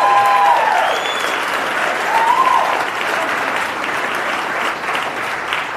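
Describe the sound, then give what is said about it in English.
An audience claps steadily for several seconds, a dense wash of applause at an even level, with a few brief whistles or cheers rising out of it early on. “You didn't let me finish Fauci Unmasked with Michael Knowles, so there's no need to clap. Absolutely no need to clap.”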